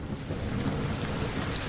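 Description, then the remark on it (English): A steady, dense roar of heavy pouring rain beside the busy Sunrise road, with a deep low rumble like thunder underneath, holding at a constant level throughout with no voices. “And, of course, it begins to rain. And it's raining and raining and pouring.”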